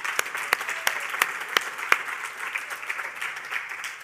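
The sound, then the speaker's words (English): An audience applauds the first pastor to serve in the church building and his wife as they stand. It is a steady, dense wash of many hands clapping, with a few sharper, louder claps standing out near the start, then thinning slightly toward the end. “Can we give him some love and applause and his wife?”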